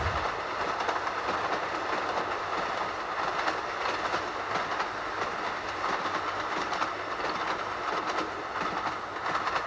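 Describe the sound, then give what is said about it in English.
A train rolls steadily along the rails, its wheels giving a continuous clickety-clack over a dense, even rumble, heard from inside the carriage with no voices, on a cloudy day during a journey to London. “On the train.”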